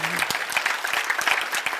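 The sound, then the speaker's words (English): A church audience claps their hands at the pastor's call in a dense burst of steady applause, many overlapping claps at a fairly even loudness, with faint voices mixed in underneath. “If, in fact, God can do anything, somebody clap your hands and say, that's right, Pastor.”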